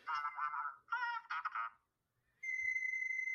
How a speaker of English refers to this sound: I have my text tone. That's what I'm trying to look up right now, text tones.